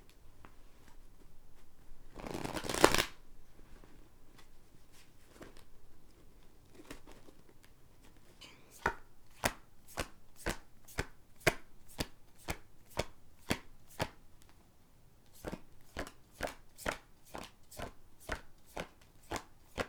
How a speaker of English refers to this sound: I am using my Labyrinthos tarot deck today because I felt like I should. I haven't used this deck in quite a while. Okay, y'all. Having some trouble shuffling.